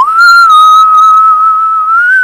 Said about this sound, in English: I'm enjoying the whistle, so thank you for that. It makes it sound a bit more alien-y.